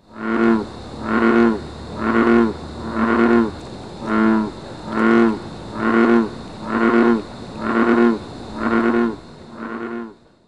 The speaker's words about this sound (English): That's the advertisement call, most common call of the male North American bullfrog, and it's really loud. It's about 90 decibels,